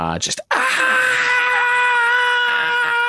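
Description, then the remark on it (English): A person voices the scream of a floating aberration monster: a brief sharp cry, then a loud, sustained, piercing shriek that holds a steady pitch for a few seconds, unbroken. “And again, this intense scream just echoes throughout all of your minds as you're around this thing.”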